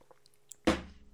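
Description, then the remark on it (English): A single short, wet slurp as someone sips a chunky wildberry drink with chunks of carrot in it, as if drawing it through a straw, rising suddenly out of near-silence and fading within half a second. No one speaks. “Hold on, let me take a sip of this.”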